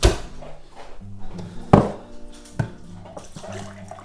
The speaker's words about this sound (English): Get myself a glass of water.